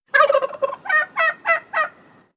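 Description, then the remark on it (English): A turkey gobbles loudly: a rapid rattling burst followed by four evenly spaced, warbling gobble notes, with no other sounds around it. “You may have already heard it already, but there is a turkey on the run somewhere,”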